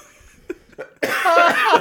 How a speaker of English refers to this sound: I cough so hard I almost puke.